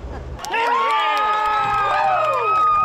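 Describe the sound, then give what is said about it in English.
A crowd bursts into loud cheering after a brief murmur as a B-29 bomber lifts off, back in the air for the first time in 60 years; many voices shouting and whooping together in a dense, sustained roar that holds steady to the end. “There were cheers all around.”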